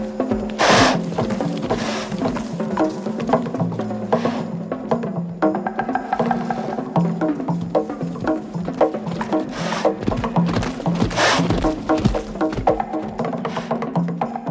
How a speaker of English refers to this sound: I have what I call the horse drums, which are just the drums of the horse while it's running around on the beach.